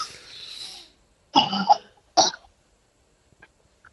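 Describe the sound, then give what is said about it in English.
A couple of harsh, wet, phlegmy coughs preceded by a rough throaty rasp, with short pauses between bursts and no talking. “That's a productive cough.”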